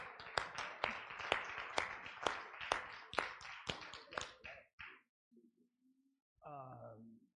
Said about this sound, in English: Praise the Lord, everybody. Let's give him a hand clap.